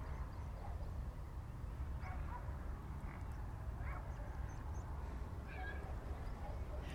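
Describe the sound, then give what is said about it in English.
A dog on a nearby farm barks again and again in short, faint yelps at a steady pace, set against a constant low rumble of background noise, with no one speaking. “What we can also hear is a nearby farm which has got quite a lot of pigs out in the field and a constantly barking dog.”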